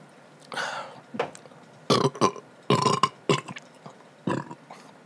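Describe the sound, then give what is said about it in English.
A series of loud burps, several throaty belches in quick succession with short gaps between them, standing alone without talking. “I like that burp, the burp cast.”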